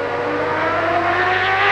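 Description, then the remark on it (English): A Mazda race car engine roars steadily at high revs at the 24 Hours of Le Mans endurance race, its harmonic whine rising slightly as it holds a loud, sustained tone, with no voices over it. “They wanted to make a name for themselves, and what better way to do that than to compete at the biggest endurance race spectacle in the world, the 24 Hours of Le Mans.”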